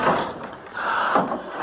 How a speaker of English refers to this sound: What was that? Something closed the front door. It's stuck. I can't get it open.